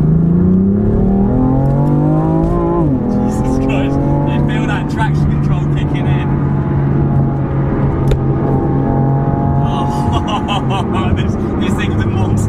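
A 3-litre twin-turbo straight-six car engine with 450 brake horsepower pulls hard down a slip road on a sunny day, its rising drone climbing through a quick gear change, then building steadily louder and higher with whooshing turbo hiss on top.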